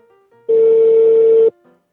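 A telephone line tone as an outgoing call rings: one loud, steady electronic beep lasting about a second, with faint tones just before and after it, and no voices.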